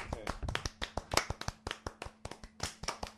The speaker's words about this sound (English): Here, I'm going to clap too. I would have clapped too, but I'm holding my mic.